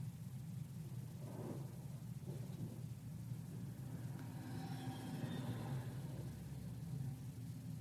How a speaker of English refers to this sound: Just the thunder.